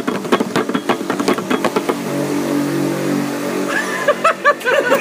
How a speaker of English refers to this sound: Fucking motorbike.